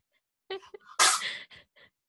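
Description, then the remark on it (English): A cat's quick sneeze: a short inhaled sniff, then a sharp, bright burst of breath followed by a faint snuffle, otherwise quiet. “It is a cat sneezing.”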